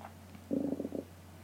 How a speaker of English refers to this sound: I just heard the sound of my belly growling.